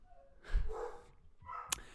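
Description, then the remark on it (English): A dog barks twice in the background, a fuller bark followed by a shorter, sharper one, both fairly quiet, with no talking. “Your dog is so loud in the background.”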